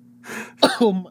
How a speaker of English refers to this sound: continues to cough into the mic instead of muting himself.